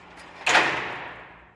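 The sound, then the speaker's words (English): A heavy metal prison cell door pops open with one sudden loud clank, its ringing echo fading slowly. No one speaks. “Cell door pops.”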